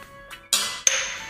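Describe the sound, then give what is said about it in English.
Two bright, ringing clinks of nearly empty drinking glasses tapped together in a toast, fairly loud, each leaving a thin hollow ring that fades slowly. “They sound empty, very empty, because they are.”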